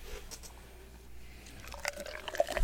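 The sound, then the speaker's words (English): Beer is poured into a glass, a soft, steady liquid trickle that grows a little louder and more gurgly toward the end, with no talking. “Or I'll just pour some in here.”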